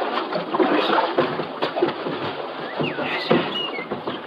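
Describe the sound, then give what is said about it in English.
A small boat moves through river water with a steady wash and swish as it pulls in to the shore near a clearing on the riverbank, water sloshing against the hull as it glides in, with a few faint bird chirps in the background. “The clearing near the riverbank. Yeah, looks like someone sitting at a campfire alone. I think that it... See, that is Dr. Stanhope. Yeah, let's pull in the shore here”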